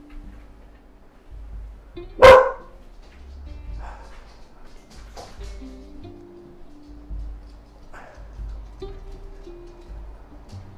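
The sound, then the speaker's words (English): A single sharp, loud dog bark rings out early, followed by a few fainter, scattered barks against a low, rumbling background. “Let me let my dogs out and see if the neighbor's dogs are out. Maybe I can get some quiet.”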